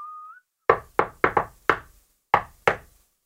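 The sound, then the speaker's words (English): A tramp whistles a brief rising, merry tune, then knocks seven firm times on a wooden cottage door in an uneven rhythm: a quick cluster, then a pause before the last two. “He knocked on the door.”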